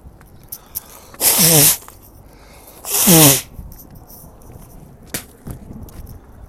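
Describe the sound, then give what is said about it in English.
Two loud, forceful nose blows about a second apart, each a harsh rushing burst with a brief honking tone, followed by faint rustling and a few soft taps, made without tissues while walking a dog. No one speaks. “Hold on a minute. I have to blow my nose.”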